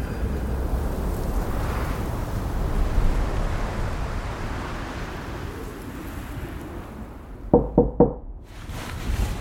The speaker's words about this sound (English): At the sound of knocking, Mick Garrett sits up and takes a moment to get his bearings. He's on the bottom bunk of a wooden bed and has just woken up. He recalls that he's in a guest room in Timberline Lodge at the base of Mount Hood.